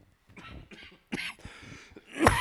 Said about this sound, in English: Good grief. He's been coughing for so long.